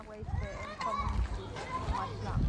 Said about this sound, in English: You can hear kids playing,